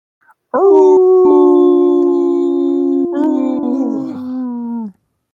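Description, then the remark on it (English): A person imitates a wolf howl: one long, loud, sustained vocal howl lasting about four seconds, rising slightly then sliding down at the end, with no talking. “Oh, man, I totally forgot I was going to kick out the idea of at Gen Con, if I hear anybody wolf howl, I'm going to wolf howl back.”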